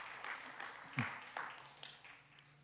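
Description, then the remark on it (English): A church audience applauds the Lord with scattered, uneven claps and a few sharper bursts, then the clapping thins and fades out over a couple of seconds while faint voices murmur underneath. “Give the Lord an applause.”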